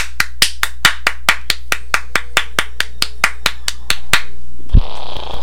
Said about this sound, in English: You may now clap. Oh, I love clapping.